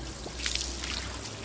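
Liquid is poured from a thermos over Mr. Rigg's grave in a short, soft splashing trickle, peaking briefly in the middle, over a low steady background hum. No one speaks.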